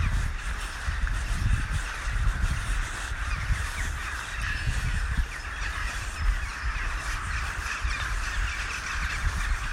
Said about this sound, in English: I'm on the reserve again. Watching a few hundred crows flying up into the trees.